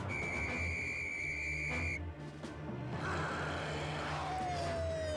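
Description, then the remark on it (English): A distorted whistle blows one long, steady, buzzy note for about two seconds over loud, noisy clatter, then a thinner whistle tone slides downward near the end. No one speaks. “The whistle is still messed up.”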